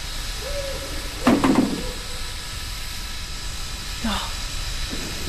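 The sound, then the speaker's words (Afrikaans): A steam train on iron wheels hisses steadily and continuously, with a couple of brief, louder clanking bursts and a fainter one later rising over the constant rushing steam. “Die eisterwiele, die stoom, die trein waarin strek agtertoe.”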